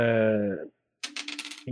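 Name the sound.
dice being rolled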